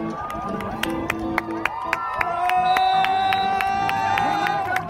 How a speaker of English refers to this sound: Like a really local rodeo, just fascinating, with eight-year-olds being bucked off horses to cheers from the crowd and women, ranch girls, they were called, racing around barrels on horses.